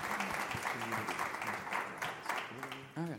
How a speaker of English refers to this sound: Let's give our people up here, our panelists, a big round of applause. Thank you guys so much for coming out.